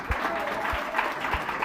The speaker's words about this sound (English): Hallelujah. Clap hands